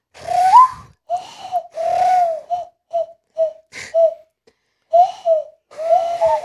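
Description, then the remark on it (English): Hollow, breathy hand whistling through cupped knuckles, fairly loud: a run of owl-like low notes, some long and swooping, others short and clipped, with brief gaps and no talking. “Do you know how to whistle knuckle?”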